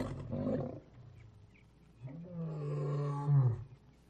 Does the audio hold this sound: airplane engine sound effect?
no